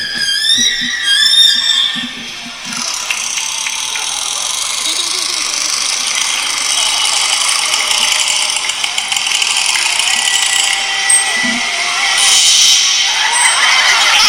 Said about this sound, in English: That was a killer whale fart.